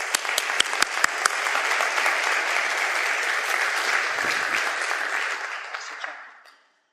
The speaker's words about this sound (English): Please give her a warm round of applause.